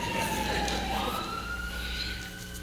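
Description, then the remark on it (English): A truck passes outside with a steady wailing siren whose pitch slowly rises, fairly loud and continuous over a low engine rumble, with no talking. “And where is God to quiet that truck right there?”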